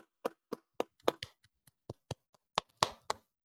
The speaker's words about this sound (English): We'll clap it up.